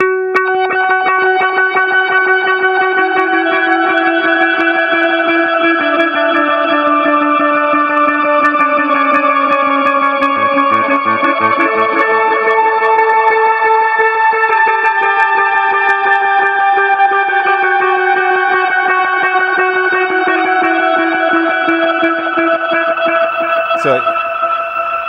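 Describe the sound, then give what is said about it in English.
A looped, effects-laden instrument drone that imitates a keyboard, made on an Aria Pro II with a filter set one click from the back: thick, sustained chord tones layered over one another, pitches shifting slowly, steady and fairly loud for the whole stretch with no talking. “And after I loop that, I'll just show you one more thing, that I make what sounds kind of like a keyboard, but it's me.”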